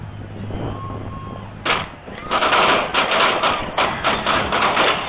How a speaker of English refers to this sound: So as you hear the gunshots going off, a space starts opening up in this crowd, and it's obvious that when the shooting started happening, people started running away from that in all different directions